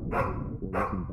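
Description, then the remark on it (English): A female dog barks twice in quick succession in a living room, each bark loud and full-bodied, with a brief gap between them and no voices present. “Then, the dog stopped barking, like whatever was upsetting her had gone, and she trotted out of the room, leaving me alone.”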